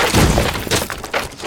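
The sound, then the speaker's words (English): A round rock is smashed down onto a bark-like shell grown over someone's legs: a heavy crunching smash with splintering, cracking debris that scatters over about a second and a half, loud. “You succeed in smashing this new like bark carapace that had been growing up you, smashing that to smithereens,”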